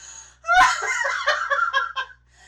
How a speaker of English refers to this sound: Your legitimate gasp of shock made that joke worth it.